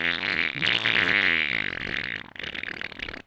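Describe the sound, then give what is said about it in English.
A long, loud, buzzy fart sound rattles on for about two seconds, then trails off into a shorter sputtering burst. No voices are heard. “Also, there could be gases formed in the sewer affecting the quality of the air. Yes, a.k.a. farts.”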